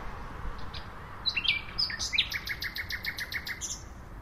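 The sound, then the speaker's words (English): A male nightingale, just arrived from West Africa to mate, sings alone at 3 in the morning to impress females, mixing sharp whistled notes and rapid repeated chirps into a varied, rhythmic phrase over faint outdoor background noise. “So these are the males. We're trying to impress the females with their fancy repertoire.”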